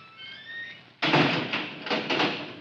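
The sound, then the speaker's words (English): A heavy metal vault door creaks faintly as it swings, then slams shut with a loud, booming clang, followed by a few rattling clunks as it settles into place. “I've got to change my key to the inside of the door, or I'll never get out when that switch locks it.”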